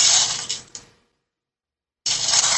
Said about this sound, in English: Shards of broken glass. Sounds like somebody chewing on them.